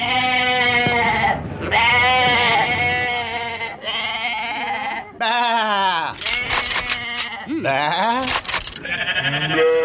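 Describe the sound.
Prison officers loudly imitate sheep, mocking an escaped prisoner as he is being brought back, letting out a string of wavering, nasal bleats one after another, with bursts of rustling noise between the calls.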